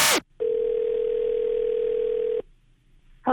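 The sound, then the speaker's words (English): A loud, steady telephone dial tone as the New Country 103.1 radio show places a call to a listener holds for about two seconds, flanked by brief bursts of sound at the start and end before quiet returns. “We're going to call her in 6 minutes.”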